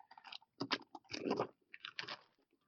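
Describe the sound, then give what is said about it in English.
Several loud, dry crunches from someone chewing a crispy spicy chicken-flavoured puffed snack, like a spicy chicken Cheeto, arriving in irregular bursts with brief pauses between bites, and no talking over them. “No, it's like a spicy chicken Cheeto.”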